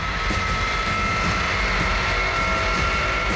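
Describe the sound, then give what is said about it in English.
A steady, loud roar of C-5 cargo jet engines approaching from a distance, with a sustained high-pitched whine on top and a continuous heavy rumble filling the low end. No voices are present. “The distant but unmistakable sound of the C-5's whining engines.”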